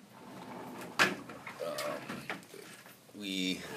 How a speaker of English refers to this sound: Now we're outside in our backyard, sitting on some chairs.